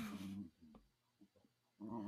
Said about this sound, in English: The dogs are doing it for me. The sounds for me. So. Those dogs, they are so cute. We should just make a whole episode of the noises our dogs can make sometimes.